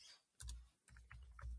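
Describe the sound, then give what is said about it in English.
A few quick keystrokes clack on a computer keyboard, fairly distinct, in short irregular bursts with brief pauses between them and no voices. “Can hear you typing away your thing there.”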